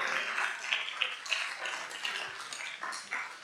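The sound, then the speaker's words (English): An audience claps steadily for several seconds, a dense, bright patter of many hands with no voices rising above it. “Cool, let's clap it up for these pioneers.”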